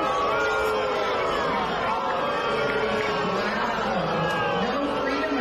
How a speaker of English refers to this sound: And then congressperson Debbie Lasko got booed by a bunch of heroes, and they complained about freedom of speech. Let's have a listen.